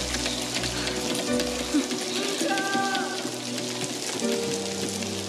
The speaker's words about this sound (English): What's wrong, Nicoletto? Afraid of a little rain?